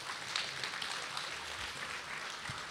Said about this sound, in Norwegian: Gi av en god applaus.